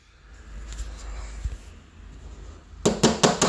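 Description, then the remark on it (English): Four quick, evenly spaced knocks rap on a door, sharp and fairly loud, following a few seconds of low, quiet background rumble. “Oh, that's me knocking. I'm knocking, but you can't come in.”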